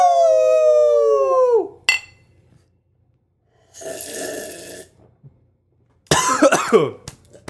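human body sound, coughing

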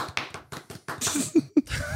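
signal or alarm, single hand clap

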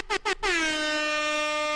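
sound effect, air horn sound effect

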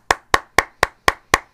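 human body sound, hands clapping

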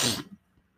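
human body sound, blowing nose

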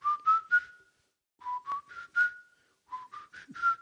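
human body sound, human whistling a tune

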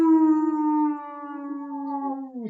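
animal, wolf howling

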